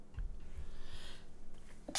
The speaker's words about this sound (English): Brought a sneeze to my nose.